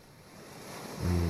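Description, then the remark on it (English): A steady hiss of rushing water like ocean surf, played by Google Assistant as water sounds for sleep, plays on its own, swelling louder with a low rumble toward the end of the brief stretch. “Playing water sounds.”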